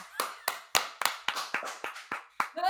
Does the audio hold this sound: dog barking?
no